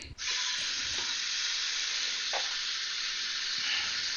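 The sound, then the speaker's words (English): Tap water runs steadily into a 6-quart locking-lid pasta pot, filling it about halfway to be brought to a boil, a continuous hiss and rush of water that stays even in loudness throughout, with a couple of faint knocks and no voices. “Fill it up about halfway with water. We're going to get this water boiling.”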